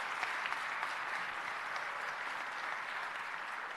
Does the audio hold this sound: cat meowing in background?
no